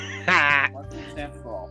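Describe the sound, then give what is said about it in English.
A person voices a single loud, nasal duck quack, imitating the sound an item in a video game makes as it is swung, followed by a moment of softer, murmured vocal sounds. “You literally pull it out and goes, wah, and you're just like, it literally as you swing it goes quack.”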